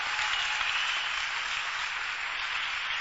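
An audience at church claps as a clap offering to the Lord, a dense, even wash of many hands that holds at a constant loudness for the full three seconds with no voices over it.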